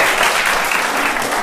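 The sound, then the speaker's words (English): A crowd applauds with dense, steady clapping that fills the whole moment, loud, with no pauses or voices standing out. “You can hold your applause just for a little bit.”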